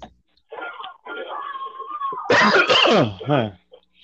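person coughing

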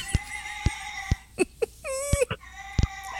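cat yowling

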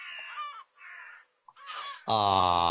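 seagull calling

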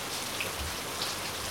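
heavy rain downpour

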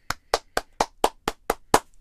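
applause

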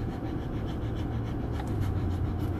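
dog panting

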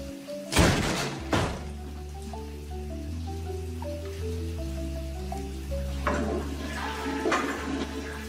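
cold water splashing

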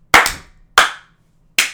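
hand clap

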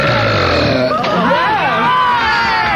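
loud belch

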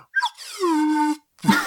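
slide whistle

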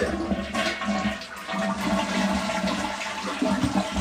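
toilet flushing

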